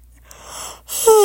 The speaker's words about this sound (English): She yawns loudly.